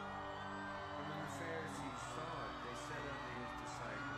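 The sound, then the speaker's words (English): A large concert crowd at Lollapalooza in Chile in 2018 cheers and shouts excitedly in a dense, continuous roar, with scattered whoops and higher-pitched yells rising out of the steady noise. “This is the crowd getting into it. They're already excited”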